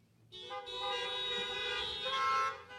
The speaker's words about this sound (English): If you're in the midst of a trial, if you're in a valley, this is normally where I say hold hands, but we're going to do horn honks.